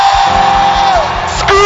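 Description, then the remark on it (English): A loud church audience erupts in shouting and whooping to give the Lord a shout, a dense roar of many voices with rising cries cutting through, sustained for the whole moment and swelling again at the end. “Okay, you want to shout? Give the Lord a shout.”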